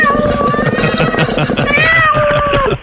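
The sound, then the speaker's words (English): A cat meows loudly and continuously for a few seconds in a drawn-out, wavering yowl, with some background voices underneath. “No, it was the cat.”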